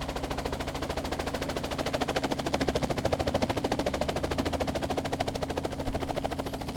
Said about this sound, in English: when all at once everybody was knocked on their asses by a helicopter descending out of nowhere.